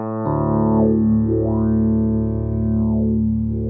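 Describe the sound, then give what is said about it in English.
A sustained electric guitar note rings out loudly and alone while the guitar's built-in filter knob sweeps slowly up and down, giving a vowel-like wah motion that rises and falls twice. “It's almost like having a filter, you know, almost pedal like or wah, something.”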